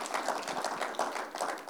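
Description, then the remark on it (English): Soft, scattered applause from a group of people, a steady patter of many hands clapping without voices, staying quiet and even throughout. “We can clap for that. I know that was quiet, but it's good.”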